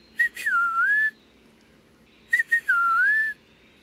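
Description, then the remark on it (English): An eastern peewee whistles its song twice, each phrase a couple of quick clipped notes sliding into a clear, slurred dipping-then-rising whistle, distinct against a quiet background. “The eastern peewee has a catchy tune, too. Pretty much whistling out its name, peewee.”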